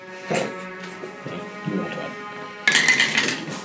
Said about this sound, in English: Advantage means you get two dice. One. Oh, no! You have advantage. It's okay. It goes with the highest. Okay. So rolling with advantage is rolling two dice at the same time